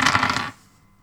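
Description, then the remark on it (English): Five dice, rolled for Gnosis plus Mind in a tabletop role-playing game, clatter and tumble across a hard surface, a quick, busy rattle lasting about half a second before settling into quiet. “And I'm going to roll Gnosis plus Mind.”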